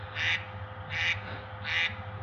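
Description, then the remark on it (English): Three harsh, nasal duck quacks in an even rhythm, each lasting about a third of a second, over a low steady hum with no talking. “All right, the Ducks telling us we got to talk about something else.”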